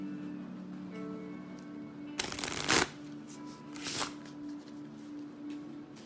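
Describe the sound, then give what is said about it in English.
A deck of cards is shuffled: a dense burst of riffling flutter for about half a second, then a shorter soft ruffle, over a low steady hum with no one speaking. “Oh, I didn't shuffle the cards.”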